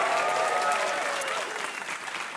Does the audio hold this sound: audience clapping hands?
yes